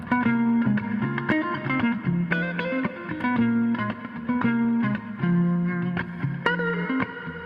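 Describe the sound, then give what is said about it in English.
A clean electric guitar plays a steady melodic line of plucked notes and chords, drenched in lush reverb that lets each note ring and bloom, loud with no voices. “Oh my god, bro, I dig that reverb so much.”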